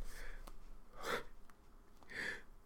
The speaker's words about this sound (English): Now I have to sneeze.